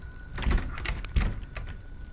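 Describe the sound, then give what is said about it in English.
A basement door in an old manor house is tried but stays locked: two dull thuds as it's pushed, with rattling of the handle and frame in between, fairly quiet. No one speaks. “What are the odds of this door being unlocked?”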